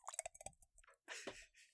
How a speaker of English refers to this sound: just took a sip of matcha tea